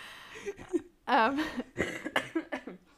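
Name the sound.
coughing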